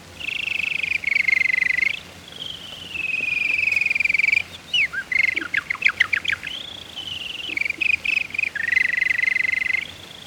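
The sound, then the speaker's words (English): A person imitates a metallic bird trill by fluttering one lip independently of the other: a steady, buzzy, high trill in several long bursts, broken midway by quick descending whistled chirps, fairly loud. “Being able to flutter one lip independently of the other, you hear the metallic bird trill.”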